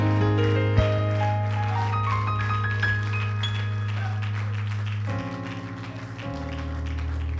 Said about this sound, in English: Would you clap your hands one more time and shout unto God with a voice of triumph?